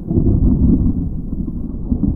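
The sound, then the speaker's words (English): A deep, continuous rumble of thunder rolls steadily for a couple of seconds, loud and low-pitched with no voices over it. “There was a sound of thunder. A deep, rumbling sound, full of threat.”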